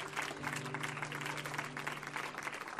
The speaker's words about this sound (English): Hallelujah. Give the Lord a mighty shout or hand clap tonight.